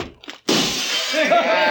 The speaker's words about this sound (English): Stop smashing those windows.